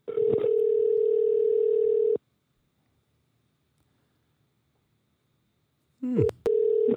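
A steady telephone ringback tone of an outgoing call buzzes for about two seconds, falls silent for four, then starts its next ring. The call is ringing out, clear, with no one talking.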